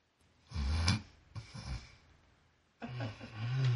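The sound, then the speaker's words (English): A person mimics snoring with their voice: three rough, rumbling snorts, each followed by a breathy exhale, fairly loud, with a brief quiet gap before the last, longer one. “As he touches your forehead, you go limp. Oh! You start to snore.”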